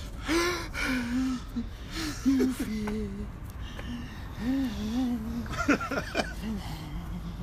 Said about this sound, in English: I'm breathing too much.